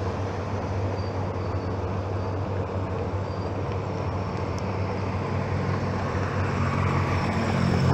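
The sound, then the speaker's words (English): A car drives by, its steady road rumble and tire noise filling the whole stretch and swelling slightly louder toward the end, with no voices. “Another car just passed.”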